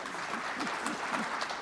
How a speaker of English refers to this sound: So thank you very much, everyone. Give them all a round of applause for being here.